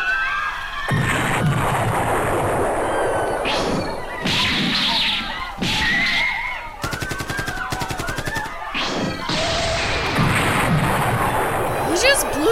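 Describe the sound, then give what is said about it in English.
Loud, dense cartoon energy blasts and booming explosions of Vegeta's Big Bang Attack from Dragon Ball pile up almost continuously, with whooshing sweeps, a rapid rattling volley in the middle, and shouting voices mixed in. “Suck on this big bang attack!”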